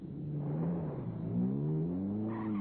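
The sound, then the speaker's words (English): An Invicta car's engine hums and then rises in pitch as it slides forward when a traffic block breaks, a steady drone with no voices over it. “And then the traffic block broke, and the Invicta slid forward.”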